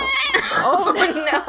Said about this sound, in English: Oh no. We have a lot of angry cat sounds on the podcast today. She did not like,